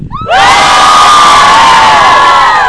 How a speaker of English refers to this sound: That was such a good cheer. It like reverberated in the canyon.